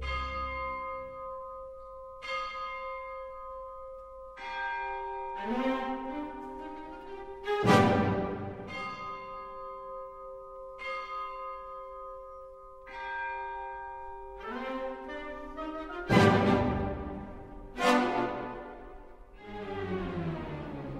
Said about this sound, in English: There's another instrument that we get introduced to in the orchestra, and that is these bells. Sometimes they're maybe just chimes or bells on stage, oftentimes bells off stage. And those are maybe what he writes before, those tolling of the bells.